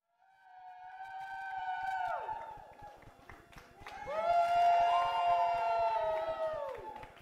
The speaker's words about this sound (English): Clapping and plenty of cheering. Noises you'd find, perhaps, in a place like the locker room of an NBA arena. But not these days, and not for over a month. Instead, these were the sounds that greeted a couple dozen healthcare workers